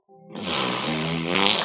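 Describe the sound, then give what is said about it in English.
A whale fart: one long, loud, buzzing rasp that starts low and tonal, then swells into a rough, airy blast lasting over a second, with no talking. “let's listen to what is actually, what I can only conclude from the format and the context, this is a whale fart.”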